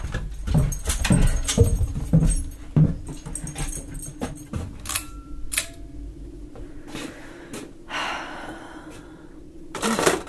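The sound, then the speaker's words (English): A dog named Pumpkin shuffles around in a basement, its tags or collar jingling in scattered bursts of clinks and rustles, with a few soft whimpery breaths. “I'm about to get sucked up into a tornado, and I'm spending my last moments on Earth in Mom's weird-ass basement with a dog that has OCD.”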